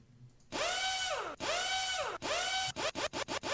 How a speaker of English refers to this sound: Must be terribly weak hammer drills because they take so long to do their thing.